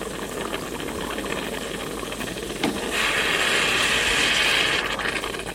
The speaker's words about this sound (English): That is the sound of hot water being pushed through freshly ground coffee, which eventually leads to the pouring of coffee and then the drinking of coffee.